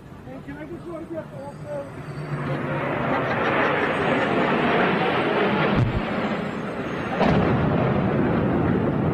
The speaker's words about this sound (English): What the hell was that? It sounded like a plane crash.